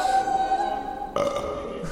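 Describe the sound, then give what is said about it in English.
A long, loud, drawn-out burp with a strong tonal rasp, breaking into a second rough burst partway through, with no talking. “It's Burpin' Christmas. Don't forget the farts.”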